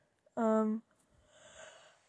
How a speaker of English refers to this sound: I don't really know, sorry, I'm yawning.